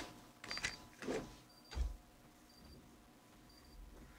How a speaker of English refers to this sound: Like, what's that beeping? I don't know.